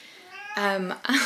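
A cat meows up close, a faint drawn-out call swelling into a loud, strained meow, followed a beat later by a shorter second meow.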